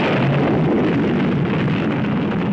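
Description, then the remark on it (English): A sustained, loud rumbling roar of a nuclear explosion in a political television ad, following a narrator's countdown, broad and dense across the whole 2.6 seconds with no speech. “Then seven, a narrator begins a countdown to nuclear explosion.”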